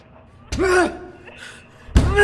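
Two heavy thuds of banging on glass, about a second and a half apart, each loud and sharp with a short resonant ring. A strained vocal sound overlaps the first blow.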